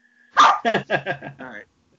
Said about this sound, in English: The dog's getting ready to go on the walk, so he's going to start barking here.